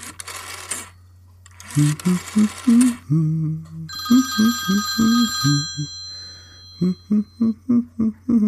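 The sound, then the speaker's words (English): A telephone rings on an outgoing call, with repeated ringing pulses and a sustained bell-like tone, after bursts of hiss and clatter at the start. No one speaks. “Time to make this phone call.”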